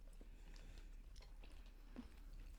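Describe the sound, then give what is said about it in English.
Chewing of a crunchy snack mix of peanuts, raisins and chocolate, with soft irregular crunches and wet mouth sounds over a few seconds, fairly quiet and with no talking. “You've got the saltiness of the peanut and the crunch, the squidginess of the raisin, and the chocolate.”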